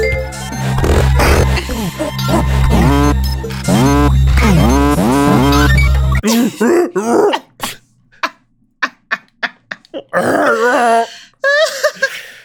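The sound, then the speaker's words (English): Video game soundtrack music from Donkey Kong Country plays with a heavy, steady bass and swooping, voice-like melodic cries for about six seconds, then breaks into sparse sharp hits and grunting, groaning vocal sounds. “That's Donkey Kong Country.”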